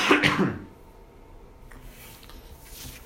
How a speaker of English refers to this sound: Okay, I'm going to cough for real.